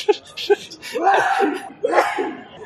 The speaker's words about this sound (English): Bless you.